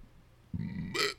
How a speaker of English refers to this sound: Excuse me for the burp, by the way. I need to stop doing that on the mic.